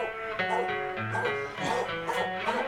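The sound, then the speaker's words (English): A dog, Mahler, barks several times in quick, uneven bursts, fairly loud, over a steady tonal background hum that runs throughout. “A reconfiguration of the last 168 hours of history with a dog.”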